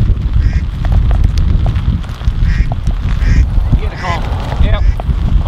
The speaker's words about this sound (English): The dude pissed the ducks off. You hear that?